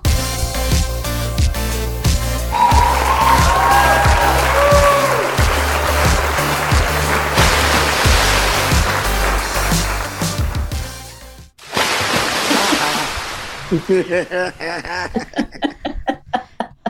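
Upbeat music plays, cuts out briefly, then a loud rushing splash of a person being dunked into a pool as it starts to rain, followed by bursts of laughter and chuckling.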